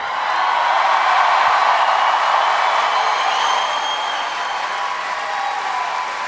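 A large crowd claps and cheers continuously to get someone to come up, a dense, steady roar of applause that stays loud for several seconds before easing slightly, with no clear speech over it.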